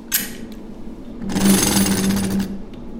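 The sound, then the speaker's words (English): A pulley-driven engine turning machine, in use at Yard Lead since 1946, cutting an engine-turned pattern into the metal of a pencil: a short hissing burst, then about a second of loud, rapidly chattering grinding over a steady low hum, with no one speaking. “So if we have to do the engine turning pattern on the pencil, we can immediately put it on the engine turning machines, which are, well, the engine turning machines have been with Yard Lead since 1946.”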